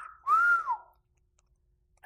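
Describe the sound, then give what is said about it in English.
A person imitates the whistle Emmett Till gave at a woman, a short, fairly loud rising-then-falling tone lasting about half a second, followed by near silence and a brief breathy sound at the end. “And when she did that, Emmett whistled at her.”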